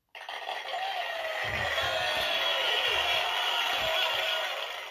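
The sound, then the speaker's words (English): Steady, dense clapping from many hands, a continuous crackling wash of applause that holds at an even loudness for the whole stretch, with no voices heard. “A lot of clapping today, and rightfully so.”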